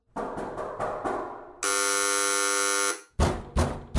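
A loud, harsh doorbell buzzer sounds once in a steady drone lasting just over a second, with a few dull knocking or clattering noises before and after it.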